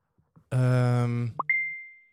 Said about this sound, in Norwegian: Jeg må bare skru av, liksom, nå har jeg ringt opp deg, nå må jeg bare skru av varslingslyden på telefonen min.